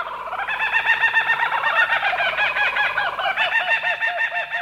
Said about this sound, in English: Yep, Australia's laughing kookaburra is a member of the kingfisher family. And it's been known to dispatch snakes up to 3 feet in length.